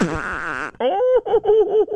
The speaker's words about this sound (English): And I release toots in my sleep.